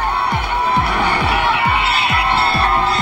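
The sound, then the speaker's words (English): A large crowd cheers loudly and continuously as the coffin of Russian opposition leader Alexei Navalny leaves the church after the service, a dense wash of many voices, with a steady low rhythmic thudding repeating about twice a second underneath. “There was more cheering from crowds as Alexei Navalny's coffin left the church and bells rang out to mark the end of the service.”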